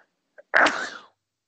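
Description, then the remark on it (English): A single loud sneeze, a quick intake of breath followed by an explosive burst that trails off within about half a second, with no talking. “I'm actually about to sneeze.”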